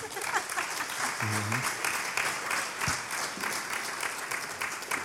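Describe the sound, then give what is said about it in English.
A live audience at the live recording of Elixir Outlaws, for the Elixir community, breaks into sustained applause, dense clapping at a steady, fairly loud level, with a brief voice or whoop rising through the noise. “Round of applause.”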